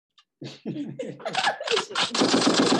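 A voice imitates gunfire with a quick run of sharp, breathy bursts that grow denser and louder into a sustained rattling spray.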